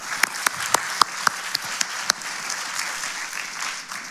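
An audience applauds steadily for about four seconds, a dense wash of clapping with a few sharp, distinct claps standing out near the start, at moderate volume and without any talking.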